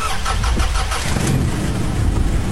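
A woman's car engine cranks and catches during a rainstorm, then settles into a steady, rumbling idle, fairly loud with no voices.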